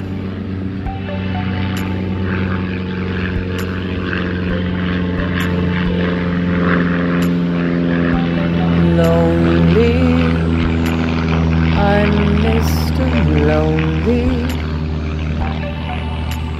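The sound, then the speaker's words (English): A propeller airplane drones steadily overhead, its engine hum loud and continuous throughout, with slight shifts in pitch as it passes and no voices. “Planes overhead.”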